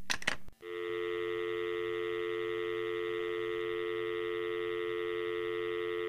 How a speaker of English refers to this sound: The telephone was hooked to a cord that plugged into the wall. When you picked up the receiver, which was also attached by a cord, there was a dial tone to tell you that it was okay to make a call.